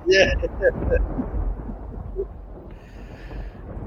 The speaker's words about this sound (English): I was waiting to hear the thunderclap there because we got a little Rye Stradamus. Yeah. There it is. As requested.